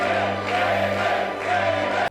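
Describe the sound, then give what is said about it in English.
A crowd cheers and roars for David Arquette during his professional wrestling run, in a steady, dense wash of many voices that swells slightly midway and then cuts off abruptly at the end, with a low hum underneath. “The people are cheering for him there.”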